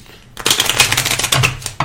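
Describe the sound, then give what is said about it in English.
A deck of cards is shuffled, a dense riffle of rapid papery flicks lasting over a second, with a brief second burst at the end. No one speaks. “Shuffling noises.”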